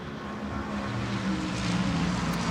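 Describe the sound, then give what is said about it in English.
The number 60 Acura hybrid race car eases gently out of the pit lane with a steady, low mechanical drone and a whirring hum that swells slightly as it rolls away. No one speaks. “And there it rolls. Quite a gentle exit, so they certainly aren't doing the full whoosh we used to see from the Toyotas a couple of years ago, but better safe than sorry.”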